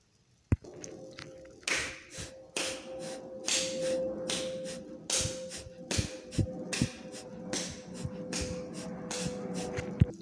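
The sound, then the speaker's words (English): A quick series of sharp, forceful breaths pushed out through the nose in Kapalabhati (skull shining breath), the abdomen contracting with each exhalation, roughly two per second in a steady rhythm, over a soft sustained humming tone, with one sharp tap at the start. “So again, that's a deep inhale, pushing the belly out, and a forceful exhalation, feeling the abdomen contract rapidly.”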